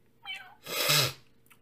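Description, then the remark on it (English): A single drawn-out meow, loud, rising and then fading over about half a second; it sounds like a person's voice imitating a cat, like Gary from SpongeBob, with a brief softer vocal sound just before it. “Oh, he's like Gary. Meow.”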